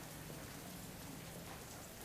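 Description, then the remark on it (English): Heavy rain pours down in a steady, dense hiss of countless drops, loud and continuous with no pauses and no voices. “With that, the door is wide, the rain is pouring down, and the street outside of you is full of people.”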